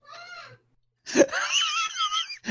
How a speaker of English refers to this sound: That's screaming in the background to prove. Yeah, that's my 4-year old.